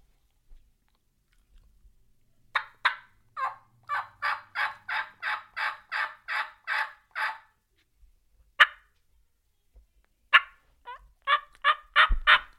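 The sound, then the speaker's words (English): A series of sharp, rhythmic turkey hen yelps and cuts made on a call by a hunter imitating a hen, about a dozen evenly spaced notes, then a pause and a few more scattered excited bursts, loud with no talking. “And I'm just trying to replicate the hen, right, and get her mad to bring her in, hopefully with a gobble.”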